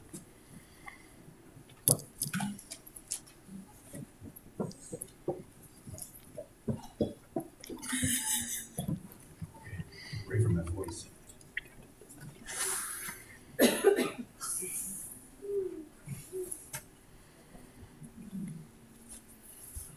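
Crinkling of a cough drop wrapper being opened in short bursts, followed by wet sucking and clicking mouth sounds, with no talking.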